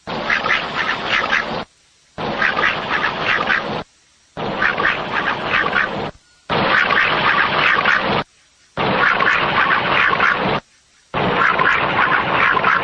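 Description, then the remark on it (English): A loud, dense chorus of ducks quacking, heard in six bursts of about two seconds each, separated by short silent gaps. The bursts sound like the same stretch repeated. No one speaks. “Let's play the ducks for the listeners here, because we're ducks.”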